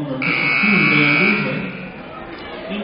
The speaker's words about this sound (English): She gets it back, though, dishes down low, and we're going to get a whistle.